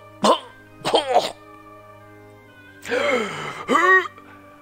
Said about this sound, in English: His body, portly and oval shaped, underneath this old man head, and he continues to cough.